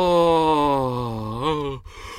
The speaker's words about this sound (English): Oh, Christ. Oh, big stretch.